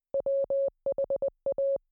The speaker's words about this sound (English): And Agent Smith, you hear this was the telegraph that is creating the Morse code, and you can listen to more if you'd like.